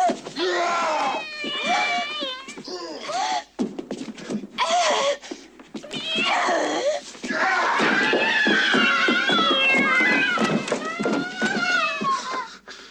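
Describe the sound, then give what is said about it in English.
Angry cat yowls and screeches blended with a woman's screaming in a film, long, wavering, high-pitched cries, loud, with a few short pauses between outbursts that blend into scream-like wails. “All is also blended in with cat angry noises.”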